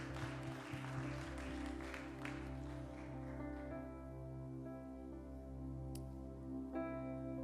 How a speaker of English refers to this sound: Come on, can you give Jesus a hand clap of praise for this commitment today?